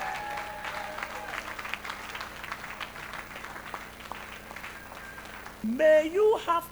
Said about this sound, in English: Now, give Jesus a very mighty clap of offering in the church today.